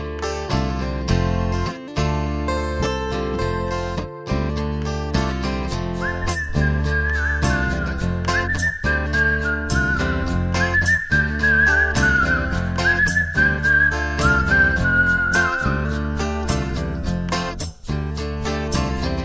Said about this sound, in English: You sort of, you hear the whistle come, and then the story of the flooding and the water and all this, and then the whistle away and fades. And so it got that feel.